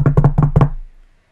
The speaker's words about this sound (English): I'm knocking on all the wood I can possibly knock on.